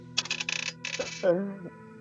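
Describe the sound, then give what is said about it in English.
Dice clatter across a hard table in two quick bursts of rapid clicks, followed by a short voiced exclamation from someone. “He only rolled 1 dice.”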